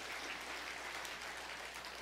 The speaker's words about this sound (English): I want you to respond by clapping the first question. How many of you have ever moved, like from house to house or city or whatever? Clap if you've ever moved.